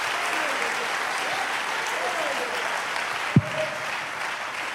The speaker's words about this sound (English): Clap your hands to affirm that statement tonight.